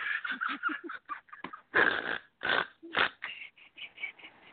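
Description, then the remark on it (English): A run of breathy, wheezing bursts punctuated by a few loud, rough nasal snorts, irregular, like snorting laughter, with no clear words spoken. “Oh, there's the snort.”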